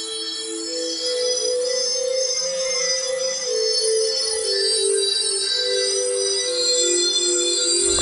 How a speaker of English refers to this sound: When it's 2 o'clock and you hear the trippy music, you know what time it is. It's time for Some Call Me Tim. There it is. It's like I can never remember where that sound is.